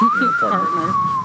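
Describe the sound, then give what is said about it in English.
Someone whistles a long, drawn-out note that rises slightly and then slowly falls, like a Western showdown tune, while people talk at the same time underneath. “Okay, you do the whistle. I can do the whistle.”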